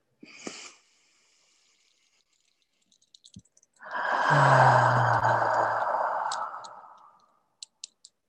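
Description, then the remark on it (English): A deep breath taken together at the start of a guided practice: a short intake, a pause with a few faint clicks, then one long, loud, airy exhale lasting about three seconds. No one talks. “And we'll take 3 deep breaths together to anchor our practice. So breathing in.”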